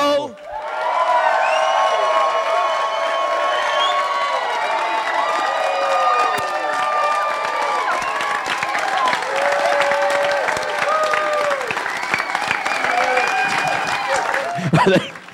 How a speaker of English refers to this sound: I think they're applauding because it's our final episode. They're like, fuck yeah.